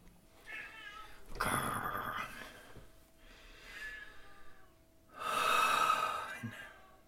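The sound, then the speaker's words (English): A cat vocalizes repeatedly, two loud, harsh, strained yowls around breathy snorting and softer mewling sounds, with no talking. “It never stops. Oh my God, this cat.”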